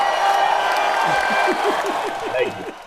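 A crowd applauds in a dense, steady wash of clapping that holds at an even loudness throughout, with a few short voiced whoops rising and falling over it in the second half.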